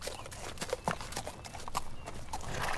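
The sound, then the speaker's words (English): Horses' hooves clip-clop in a steady, uneven rhythm of sharp knocks, with a faint rustling background and no voices. “Okay, here, we've got two more horses hitched here that you can borrow. Let's saddle up and get moving.”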